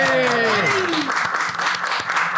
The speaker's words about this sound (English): Yay. Hey. Got some applause on that shit. All right. Well, let's just get a round of applause for our Thanksgiving episode right here, everybody. Studio audience.